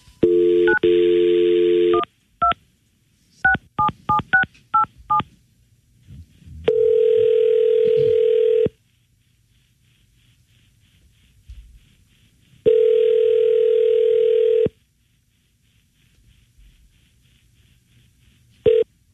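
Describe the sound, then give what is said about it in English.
A phone call placed to comedian Gilbert Gottfried for a scheduled interview: a steady dial tone gives way to a rapid series of short, beeping touch-tone digits, followed by two long, evenly spaced ringback tones with silence between them. No one speaks. “And we were calling him. Yep. So we placed that call.”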